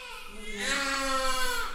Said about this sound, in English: At a maternity hospital in western Kyiv, newborn baby cries echo across the long hallways, with portraits of newborns hanging on the walls.